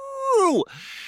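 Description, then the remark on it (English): A single human voice imitates a werewolf howl: a sustained, loud "ooh" holding steady, then sliding sharply downward in pitch before cutting off abruptly, followed by faint breathy noise. “My ooh just came out like a classic werewolf howl.”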